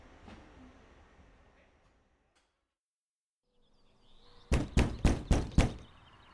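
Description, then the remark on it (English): Five firm, evenly spaced, loud knocks on a door, following a stretch of quiet with faint background rumble. “What's the password? Open the door before I pan it in.”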